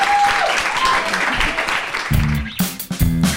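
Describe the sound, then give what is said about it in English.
An audience claps steadily in a dense, crackling wash of applause for a guest on stage, and loud voices and whoops burst out over it toward the end. “Can we have a little round of applause in the meantime”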